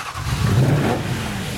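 The engine of an old red Aston Martin from Johnny English, a petrol-drinking, oil-leaking car with no safety features, satellite navigation or computer chips, revs, its low throaty roar swelling briefly in pitch and loudness before settling back into a steady rumble, with no voices.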